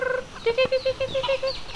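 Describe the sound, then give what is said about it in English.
Roaming chickens cluck in a quick, steady run of about nine short notes, clear, with no one talking over them, at a home with a two-story wood house in Rocky Pine, among horses and pigs. “She lives here with her husband in a two-story wood house, surrounded by roaming chickens, horses, and pigs.”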